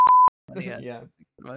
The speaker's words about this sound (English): I mean, yeah, I know a lot of people, but I don't know all the Red Lobster employees. I'm going to beep all those names out anyway.